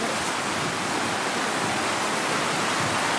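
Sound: roar of a river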